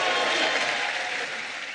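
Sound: applause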